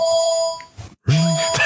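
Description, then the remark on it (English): A phone ringtone chimes with steady electronic tones for under a second, breaks off into a brief silence, and then a man starts speaking close by. “Paul Pogba's just ringing.”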